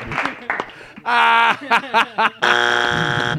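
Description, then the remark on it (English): A loud, harsh game show buzzer malfunctions, blaring in two long blasts separated by a few short stuttering bursts, following a moment of voices and chuckling at the start. “Sorry, our buzzer fucked up.”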